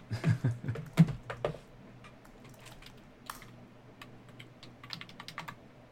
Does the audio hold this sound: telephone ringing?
no